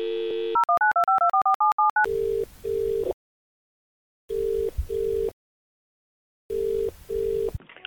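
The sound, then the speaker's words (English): A cafe owner phones the chip shop next door: a steady telephone dial tone, then a quick run of about ten keypad beeps, followed by three rounds of double-pulsed ringing tone separated by short silences. No voices. “Cafe owner is now going to warn the chippy.”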